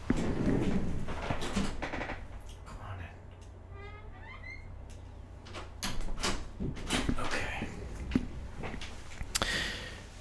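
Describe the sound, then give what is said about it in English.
A door is opened to let a cat in: a series of knocks and clunks, a short squeaky, creaking stretch in the middle, then more rattling bumps as it opens, over a low steady hum. “Hold on, I got a cat at the door here.”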